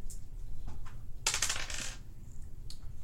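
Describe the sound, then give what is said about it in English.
A damage die for a dagger attack in a game clatters and tumbles briefly across a hard tabletop, a quick burst of bright rattling clicks lasting under a second, with a few faint taps before and after against a low hum. “It's a damage dice.”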